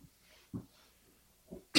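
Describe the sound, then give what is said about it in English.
A few muffled coughs come in short bursts, building to a sharp, loud cough at the very end, with no talking around them. “I'm battling a cough here.”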